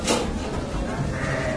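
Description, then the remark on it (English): Sheep on the Seguin sheep farm, which supplies milk for Roquefort, bleat steadily in a barn at 5 p.m. as they get ready to be milked, several animals calling over one another in a dense, continuous chorus, with a constant low background rumble underneath. “It's 5 p.m., and the sheep on the Seguin farm are getting ready to get milked.”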